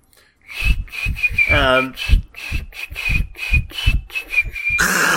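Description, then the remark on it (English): Someone whistles a song, a thin high melody carried over a steady rhythmic thumping pulse for about five seconds, ending abruptly in a burst of noise. “Okay, I won't whistle.”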